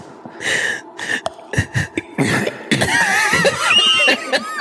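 A loud bout of coughing: several sharp, hacking bursts in quick succession, running into a longer, rougher stretch of wheezy, voiced coughs.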